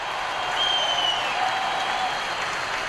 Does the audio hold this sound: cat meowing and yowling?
no